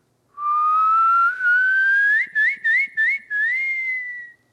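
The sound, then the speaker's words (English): A person whistles an imitation of the song of a bird heard in a Himalayan national park along a race route: a long tone gliding slowly upward, then a run of quick chirping warbles, ending on a held high note. No talking. “another thing that I really liked was a part of the race would run through a Himalayan national park, and I'd hear these birds every now and then sing, like, you know, there's one bird that had this specific, I'm going to try doing that.”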